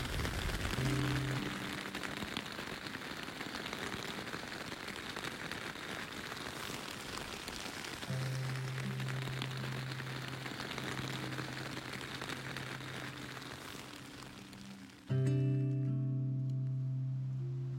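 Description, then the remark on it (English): Steady, heavy rain drums on a tent, a dense continuous patter that never lets up, with a low droning hum rising underneath now and then, heard from inside a sleeping bag before 9 p.m. “I kind of have to pee, but it's really rainy outside.”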